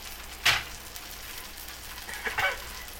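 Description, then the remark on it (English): Steady sizzling of bacon frying in butter in a pan, with a sharp crackling pop near the start and a burst of spattering toward the end, no voices. “Oh, that is frying.”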